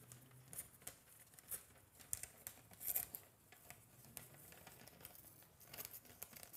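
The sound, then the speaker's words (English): Paper being cut and torn, a run of crisp rasping tears and crinkles with sharp little snips scattered through, steady and fairly quiet with no talking. “So he cut it, gave him his paper. If I can cut it neatly.”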